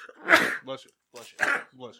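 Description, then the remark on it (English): Two sharp sneezes about a second apart, each a noisy burst trailing into a short voiced tail, with nothing else around them. “Bless you.”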